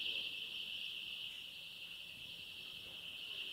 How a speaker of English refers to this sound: Is that an alarm?